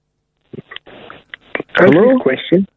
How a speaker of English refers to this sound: What's he doing? I don't know. You're coughing.